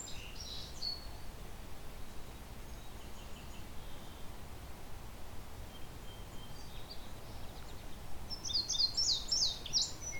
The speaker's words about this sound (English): Of course, this indigo bunting is way louder than both of them.